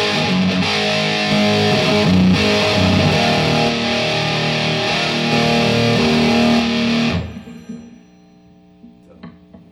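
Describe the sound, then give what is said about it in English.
A loud, gritty electric guitar played through a distortion effect rings out in sustained, buzzing chords for about seven seconds, then cuts off abruptly and leaves a faint fading tail. “Or the distortion.”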